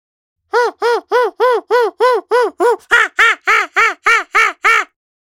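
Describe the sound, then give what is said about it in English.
An immature blue heron calls in a rapid, steady series of about fourteen harsh, nasal squawks, loud and evenly spaced, with no other sounds around it. “Immature blue heron.”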